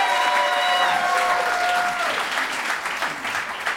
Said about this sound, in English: And as the applause died down